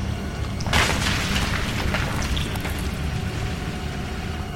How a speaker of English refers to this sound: There is a great thunderous boom as the roof all splits. Rocks begin to tumble, come crashing down to the ground. The place is coming apart.